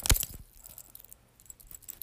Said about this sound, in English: Oh, here we go. What? A whole bunch of keys.